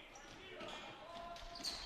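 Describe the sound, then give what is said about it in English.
A basketball bounces on a hardwood court during a Detroit Lakes Lakers game against the Cardinals in the first half, a few thuds under steady crowd noise and a commentator's voice. “Tompkin lost his dribble, picks it back up, gives to Solberg.”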